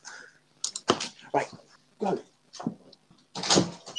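A dog scratches at a door to be let out, in a series of irregular, rasping scrapes and soft thumps, moderately loud, with brief pauses between bursts.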